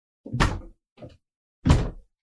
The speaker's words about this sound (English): Uh-oh. Uh-oh. The sock drawer is stuck.